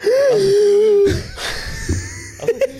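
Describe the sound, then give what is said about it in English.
A voice imitates gasping for air after running back winded to an apartment door: a drawn-out, wheezy whine of breath, then a few harsh, breathy gulps and short catches, loud, with no words. “And I stopped at the door, put my hand on the door to gasp for air.”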